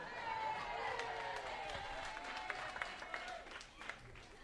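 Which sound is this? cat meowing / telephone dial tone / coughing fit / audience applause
audience applause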